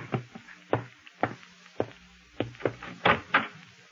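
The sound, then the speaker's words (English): Firm knocking on a wooden door, around ten sharp raps in two uneven bursts with brief pauses between, heard alone with no voices. “Oh, excuse me. Someone's at the door.”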